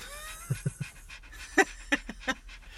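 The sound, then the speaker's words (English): A dog pants in a quick, uneven series of breathy huffs, several short bursts spaced through a couple of seconds, with no one talking. “The painting is the dog, not me.”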